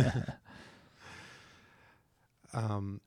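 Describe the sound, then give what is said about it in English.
A sharp cough bursts out at the start, followed by a long breathy exhale and then a short voiced throat-clearing hum. “excuse me, where's that cough button? I'm working on it.”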